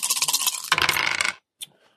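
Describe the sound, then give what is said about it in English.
A clatter of dice tumbling and rattling across a table for over a second, then a sudden stop and a single faint click afterward; fairly loud, no voices. The dice are rolled for a survival check in a game. “Can I roll survival to know something about it? Mm-hmm. Two more dice, please.”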